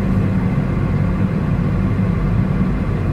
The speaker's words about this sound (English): That boat's leaving. Sorry. I'm here waiting for the ferry, and I just realized that the ferry boat is leaving. I thought that I was getting on that boat, but I guess it's full,